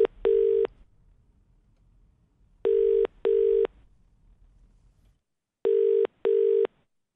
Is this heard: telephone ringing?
yes